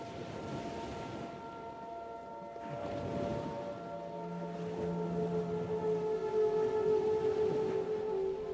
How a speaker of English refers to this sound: Focusing on the sounds of the waves, release each stressor as the clouds overhead pass by in unison with the tide.